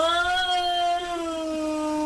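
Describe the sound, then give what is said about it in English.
A cat yowls at its own reflection in a mirror in one long, sustained, loud wail with a strong harmonic tone that bends slightly downward, with no other sounds around it. “That's him yelling at himself in the mirror.”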